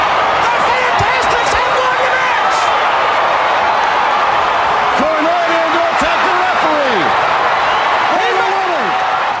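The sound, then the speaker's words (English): A wrestling arena crowd roars in a loud, continuous wall of cheering and clapping after the Fantastics win the match with a 1-2-3 pinfall, with rising and falling shouts and whoops cutting through the din throughout. “That's a genuine reaction where they're glad they got the 1-2-3 because it meant something.”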